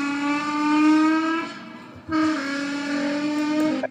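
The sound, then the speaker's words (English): A trombone blares two long, sustained brassy notes, each roughly two seconds with a brief gap between, mimicking a car, like a Japanese import car's horn or engine. Loud, with no voices. “That's a guy with a trombone. You can get him to ride the car with you. So it sounds like a Japanese import, you know.”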